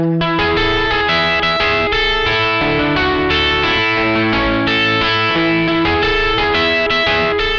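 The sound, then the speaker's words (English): Guitar played with a capo at the fifth fret, giving a bright, ringing tone with steady strummed chords and sustained harmonics, carried by chorus-like effects throughout and no voices. “Here it is with a capo at the 5th fret.”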